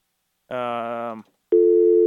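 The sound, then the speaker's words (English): A brief buzzy, harmonic-rich tone gives way, after a short gap, to a loud steady electronic telephone busy tone after a caller hung up, holding until the end. “Hung up. What's with the phones tonight?”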